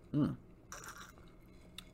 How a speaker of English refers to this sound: Cheers, let me get a sip of this. Hold on.